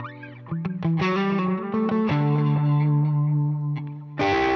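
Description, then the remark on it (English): An overdriven electric guitar plays a short phrase of sustained, harmonically rich notes through a Hiwatt-style valve amp with EL34 valves, loud, ending with a fresh strummed chord. “What is a high watt David Gilmour 103 signature custom amp?”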